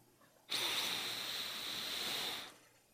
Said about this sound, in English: I took a big sniff. Unfortunately, nothing.